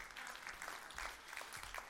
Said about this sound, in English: So clap for yourselves one more time.